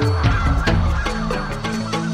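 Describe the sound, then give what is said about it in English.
A dense chorus of Canada geese honking in spring, many overlapping calls in quick, irregular bursts, loud with a steady din of the flock underneath; aggression picks up every 20 to 30 seconds, dies down and picks up again. “Hear more on Canada geese in future programs.”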